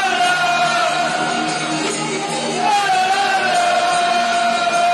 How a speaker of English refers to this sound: Crowd's pumped up for it. Good Friday afternoon. It's grim, it's miserable. Pouring with rain at the moment, floodlights are on.